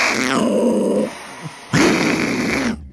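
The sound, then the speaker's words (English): A voice imitates a desert lynx growling and hissing: a loud, raspy snarl, a short pause, then a second harsh hissing growl, with no talking. “That hiss is new.”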